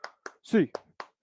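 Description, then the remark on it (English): Sharp hand claps in an even, quick rhythm, an eight-count clap for UCLA Bruins fans to end a show, about five in a row, with a brief voiced shout landing between the second and third claps. “8 clap time, baby.”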